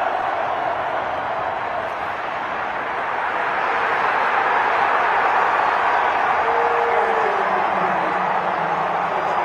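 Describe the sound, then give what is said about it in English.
A huge stadium crowd at Lambeau Field South roars and cheers after Aaron Jones' rushing touchdown, in a loud, continuous wash of voices that holds steady and swells slightly partway through, with no single voice standing out. “Listen to that crowd at Lambeau Field South, man.”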